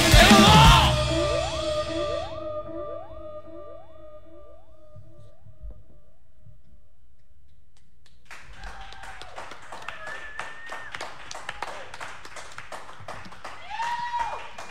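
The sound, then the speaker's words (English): A live song on the radio show WMSC's Local Live ends on a loud chord with ringing tones that fade, then after a quiet pause an audience breaks into steady clapping with scattered whoops and whistles. “We thought you guys were doing some sort of arty ending there, so we didn't catch the applause right at the right time.”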